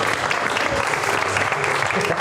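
An audience breaks into sustained applause to welcome a speaker before a talk on using social media, a dense, steady wash of many hands clapping at once, loud and even throughout with no pauses.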